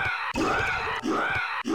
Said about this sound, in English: He if that hasn't sold you on the character, he is screaming at all times. Literally everything you do is accompanied by some scream sound. It's like a horrible chicken. It's great.